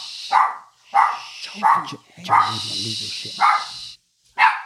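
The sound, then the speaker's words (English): A dog, Yofi, barks repeatedly, about six sharp barks in an irregular rhythm, with a person's voice speaking underneath in the middle of the burst. “No, that's not for barking.”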